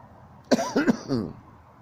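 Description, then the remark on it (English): A short burst of throat-clearing coughs to clear phlegm, two or three harsh, wet hacks in quick succession, fairly loud against a quiet background with no talking. “I will cough. Cough it out.”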